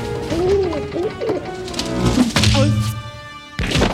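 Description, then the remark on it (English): In a movie scene, soft, warbling pigeon-like cooing of birds outside rises and falls over a busy background with thumps and clatter, ending in a burst of noise. “The baby sees birds outside and climbs out on a ledge following them.”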